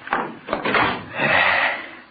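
A door being shut: a couple of wooden knocks and rattles, then a longer scraping sweep as it swings closed, moderately loud with no voices.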